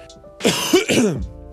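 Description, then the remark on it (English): A single harsh cough with a rough, throat-clearing quality, lasting under a second, heard alone against a quiet background. “Also, as you can look, I might leave that one in just to show some context. I will edit out the other coughs, but I've also been a little bit sick.”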